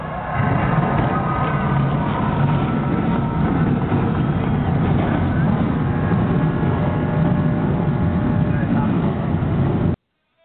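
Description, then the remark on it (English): Several race car engines, started on the call 'drivers, start your engines!' given on behalf of General Tire, roar together at a steady, loud level, a dense rumbling drone that holds for about ten seconds before cutting off abruptly. “On behalf of General Tire, where anywhere is possible, drivers, start your engines!”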